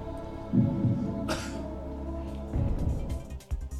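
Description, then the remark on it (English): A single short cough bursts out about a third of the way in, sharp and brief, over a steady low hum and murmuring background with no clear speech. “And another cough.”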